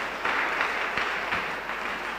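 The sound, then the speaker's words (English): An audience claps together, a dense, steady patter of many hands filling the whole stretch at an even, fairly loud level, with a few sharper claps standing out. No one speaks. “Oh, clap for them.”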